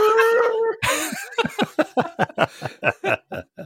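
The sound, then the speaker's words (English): A person does a short, sustained nasal trumpeting call in imitation of an elephant, followed by a burst of noise and then a run of rhythmic, hearty laughter. “And then 3 seconds later, they just heard an elephant go...”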